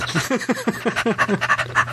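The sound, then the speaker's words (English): A person imitates a dog's panting with a quick, steady run of about a dozen breathy huffs over two seconds, fairly loud, with no talking. “You sound like a doggy then.”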